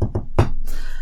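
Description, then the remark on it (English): A few sharp knocks on a door in a shave-and-a-haircut rhythm, two quick raps followed by a heavier third, then a steady hiss of background noise with no further knocking. “So anyway, Pelikos, you give a little shave and a haircut.”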